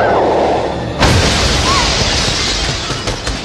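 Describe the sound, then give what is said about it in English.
A sudden, loud crash as a cathedral window's glass shatters when Batman and Vicky swing into it, followed by a bright, hissing spray of debris that lingers for a few seconds over a low rumbling background. “Batman and Vicky swung and crashed into one of the cathedral's windows.”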